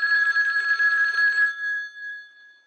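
A single loud burst of an old-style telephone bell at a Miami newspaper, a rapid metallic trill lasting about a second and a half before the ringing tone fades away on its own. No voices.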